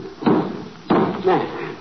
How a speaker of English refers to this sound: I merely take my pocket handkerchief thus and wrap the watch in it. Thus. Oh. Now I take this hammer. Mm-hmm. Now I see it says, take the hammer and pound the watch out flat. There.